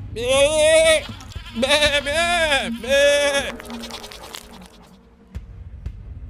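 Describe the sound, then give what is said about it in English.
Three loud, wavering bleats from a ghost goat in quick succession, each with a strong quavering harmonic tone, followed by quieter rustling and a faint low rumble. “What in the hell was that? A ghost goat, apparently.”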